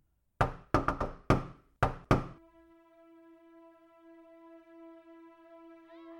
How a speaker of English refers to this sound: why don't you make yourself useful and knock on the next door?